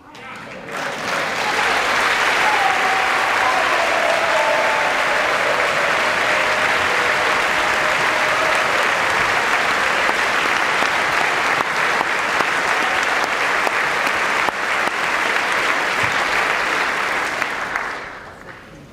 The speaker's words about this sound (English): Okay, so they applauded. Kind of unenthusiastic, polite applause, just sort of, you know.